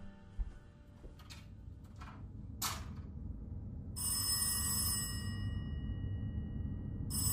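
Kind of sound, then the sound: household object, telephone bell ringing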